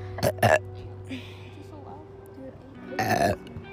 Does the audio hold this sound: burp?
yes